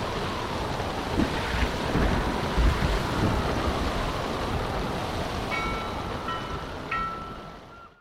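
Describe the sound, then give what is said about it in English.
A storm on Matinicus Island roars steadily with gusting wind and the heavy wash of crashing ocean waves, loud and continuous, with a thin whistling tone rising near the end before it fades out. “Eventually, despite the storm raging outside, I fell asleep.”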